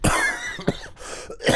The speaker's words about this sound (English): I was coughing.